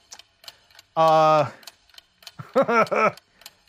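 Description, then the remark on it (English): A faint, steady ticking of a one-minute countdown timer runs throughout at a regular quarter-second pace, briefly overlaid by a long sustained vocal tone and then a few short voiced sounds. “The gut reaction, walking out of the theater, 1 minute on the clock.”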